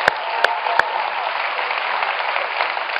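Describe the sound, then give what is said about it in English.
A crowd applauds four people who came on stage, standing up; a steady, dense wash of many hands clapping at even loudness throughout, with a few sharp, louder claps standing out near the start. “Let's give them a round of applause right here.”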